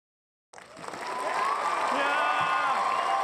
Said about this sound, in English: It's a full 36-second long cheering.